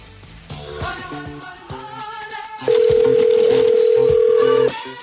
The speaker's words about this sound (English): And this is the winner. See how this magic goes. The dialing of the phone. The dialing. Dial.